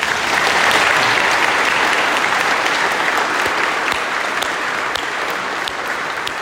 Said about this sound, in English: I'll just welcome to all of our friends and family that are here for our graduates. You did it. Clap for them, huh?